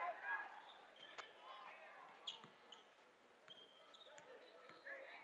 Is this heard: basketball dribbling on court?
yes